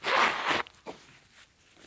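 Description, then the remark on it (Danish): Someone with a runny nose blows their nose in one loud, rough, hissing burst about half a second long, followed by a couple of fainter, brief snuffles. No one speaks. “Men jeg må lige pusse næse, ellers lyder det ikke ordentligt.”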